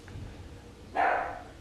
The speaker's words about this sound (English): My dog's barking. Probably at nothing.